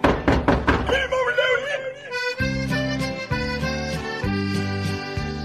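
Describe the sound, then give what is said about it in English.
Four quick, firm knocks on a porch door in the opening second, followed by sustained melodic tones that carry on to the end. “Hark, what's the noise out by the porch door?”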